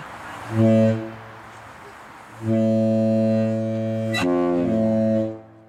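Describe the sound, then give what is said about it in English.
A deep, booming ship's horn sounds twice: a short blast, a pause, then a long sustained blast with a brief dip near the end. It is loud and rich in low harmonics, with no talking. “And this person actually links to sound of a ship's horn.”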